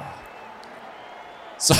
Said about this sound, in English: I actually cracked my knuckle on my big toe. Felt real good.